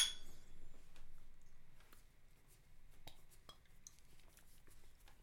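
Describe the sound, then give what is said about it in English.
A few light glass clinks ring out over a low background hum, sharp little taps close together, as glasses of beer are touched in a toast. “Well, cheers, brother.”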